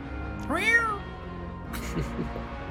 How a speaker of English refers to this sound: Very unhappy kitty.